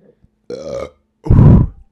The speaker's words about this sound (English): Burped right in the mic.